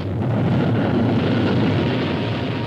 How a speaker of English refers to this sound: Progress is the sound of a motor, the hum of a turbine, the heartbeat of a factory, the sound of a symphony, the roar of a rocket.